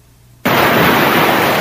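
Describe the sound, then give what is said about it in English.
After a brief near-silence, a loud, steady wash of ocean-wave sound, played as sleep sound 3 on a voice-controlled alarm clock's sleep sound feature, switches on abruptly and continues evenly as a broad hiss, with no voices. “So as you can hear the background, this is what appears to be waves on a beach.”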